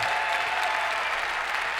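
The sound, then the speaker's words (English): A theater audience at a live taping of the Riders Radio Theater show at the Emory Theater in Cincinnati, Ohio, claps steadily, a dense, even wash of many hands with no breaks, holding a consistent loudness throughout the short stretch. “Folks, another round of applause for the yodeling brain surgeon, ….”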